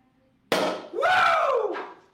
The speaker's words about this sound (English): I won't savor it today because we have great friends in the lounge, but I will pop the cork. Are you ready for the sound?